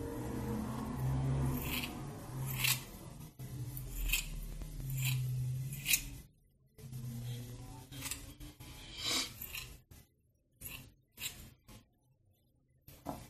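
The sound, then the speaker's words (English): Crisp scissor snips as a person's hair is cut, a dozen or so in an irregular rhythm, with a low steady hum underneath during the first half and short pauses between cuts. No one speaks. “I'm gonna trust you with these scissors.”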